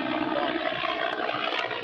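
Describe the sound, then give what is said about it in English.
A steady, rushing roar of an airplane overhead, broad and even in loudness throughout the short stretch, with no voices. “Is that a plane?”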